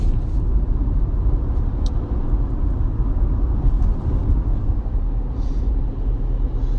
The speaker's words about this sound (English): On my way to work, I just saw the three. It looks like a 3-car accident. I was wondering why traffic was going so slow. It's crazy.